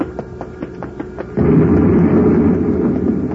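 As pressure builds up in the vats of a lab, a series of quick, regular knocks and pops builds for a moment, then one vat bursts in a sudden loud explosion that turns into a heavy, sustained rumbling roar. No one speaks.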